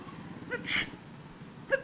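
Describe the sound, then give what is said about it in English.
A single sneeze bursts out as a short, sharp, breathy hiss, followed a second later by a brief, smaller catch of breath. No one speaks. “And would you mind covering that sneeze a little better?”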